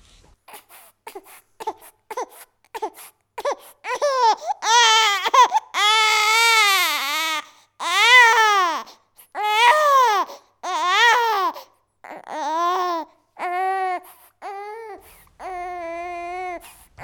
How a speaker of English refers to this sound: These babies usually cry in a more variable pitch, the pitch or crying that seems to be made up of more musical notes. Babies with colic can sound like they are screaming in pain.